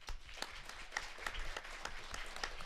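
An audience at Toronto Comic Con breaks into a steady round of applause, many hands clapping in a dense, crackling wash with sharper individual claps standing out throughout.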